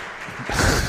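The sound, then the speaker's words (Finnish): A sudden burst of applause for a good answer breaks in halfway through, a dense, steady wash of many hands clapping at fairly high volume, with no voices over it. “Tämä on mahtava, aplodit.”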